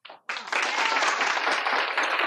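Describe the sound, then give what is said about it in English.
A crowd breaks into dense, steady applause after a brief opening burst, many hands clapping together in a loud, sustained wash with no individual claps standing out. “Ready to clap.”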